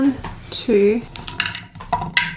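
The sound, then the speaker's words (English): Two dice clatter and rattle across a hard surface in a quick burst of small clicks, with a voice speaking briefly before the tumbling. “There's so many dice and I only rolled two.”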